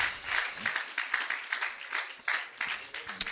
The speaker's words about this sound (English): Would you clap your hands to the Lord, everybody? Let's give God praise.